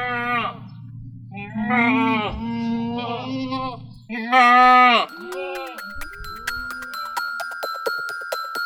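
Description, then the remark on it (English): Dairy goats at Crow's dairy, which milks 220 goats a day, bleat loudly, one long wavering call after another. A few fainter bleats follow over light metallic clanking and a steady ringing tone. “Crow's dairy started with 17 goats. Now they are milking 220 a day.”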